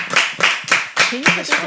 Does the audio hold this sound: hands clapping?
yes